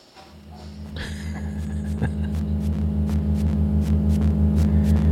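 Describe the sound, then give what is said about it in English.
A lawnmower engine in Austin, Texas, in mid-May drones steadily with a low, throbbing buzz, swelling louder over the first couple of seconds and then holding a constant roar, with faint rhythmic ticks over it. “You are listening to a lawnmower.”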